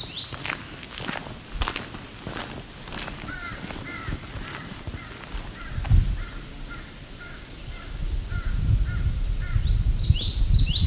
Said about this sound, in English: That's another crow.